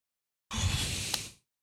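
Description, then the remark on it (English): A man yawns once, a breathy, drawn-out exhale with a low voiced groan underneath, fairly quiet, lasting under a second before trailing off into silence. “He's yawning.”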